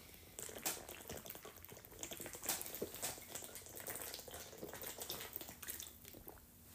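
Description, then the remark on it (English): Someone drinking water during a quick break, with steady sloshing and small wet clicks and gulps over several seconds, fairly quiet, with no talking. “Real quick break, water break.”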